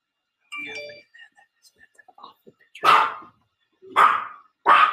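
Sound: dog barking at doorbell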